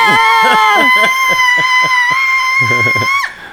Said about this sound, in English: Because I think just people screaming as a recording, and that should be like your text. Oh. You know. You got a text.